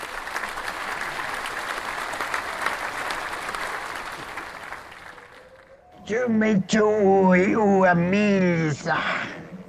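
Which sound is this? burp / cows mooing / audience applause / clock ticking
audience applause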